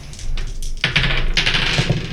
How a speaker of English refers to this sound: Should we roll for that, or are we? Sure, yeah. Give me an enhanced mind roll. Just two dice.